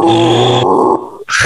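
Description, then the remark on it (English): A voice loudly imitates a shrill, strained pig squeal that drops lower and breaks off, then lets out a short, breathy rushing hiss like a leaf blower. “And as soon as I like turned my head, all of a sudden I just get hit with this loud, like a combination of like pig squeals and leaf blowers just hitting me on both sides of the head.”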